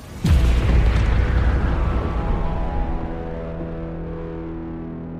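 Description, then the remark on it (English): A single loud, booming explosion erupts sharply as a laser beam destroys a spaceship's auxiliary thruster, then rolls into a long, rumbling, ringing decay with sustained low tones, sounding like a heavy sci-fi blast with no voices present. “The next laser beam cut deep into my structure and destroyed one of my auxiliary thrusters. The resulting explosion shocked my entire body.”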